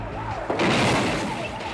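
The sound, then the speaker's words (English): A police car slams into a parked car with a sudden, loud crash about halfway through, followed by a heavy, sustained roar of crunching metal and noise that fades slightly toward the end. “And then you see this police car go flying through the parked one.”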